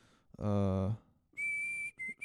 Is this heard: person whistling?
yes